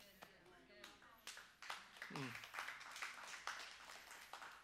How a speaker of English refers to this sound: Half of you are clapping, the other half are going, "What happened? What happened?"